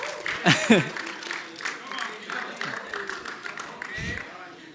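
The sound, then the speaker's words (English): A room of people claps in a brief, scattered round of applause for people coming up for a Q&A panel, the claps mixed with murmuring voices and chatter, moderately loud. “So sure, yes, you can clap for them.”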